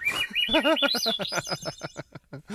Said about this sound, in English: And it is crazy because there are so – I'm like, where are all of these seagulls during the game? Because they just descend like they – okay, I got it. Out of another dimension, they're wizard birded in.